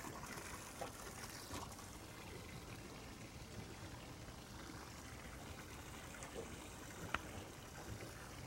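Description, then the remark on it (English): Fresh water trickles and pours steadily into a container, a continuous bubbling, splashing wash with a brief sharper splash near the end, moderately loud. “Some fresh water. Hopefully it was cool water.”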